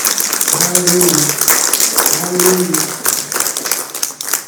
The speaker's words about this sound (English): Go ahead and give the Lord a hand clap of praise for all the good things.